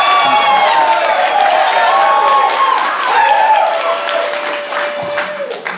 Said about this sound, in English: one very sarcastic yay to round out the attitude applause. That yay is my spirit animal.